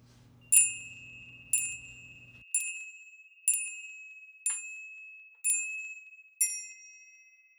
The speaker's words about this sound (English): I've got these Christmas bells that we kind of, my family got in a set of Christmas crackers. Yeah, so they sound very twinkly and quite Christmassy. They're all out of tune with each other.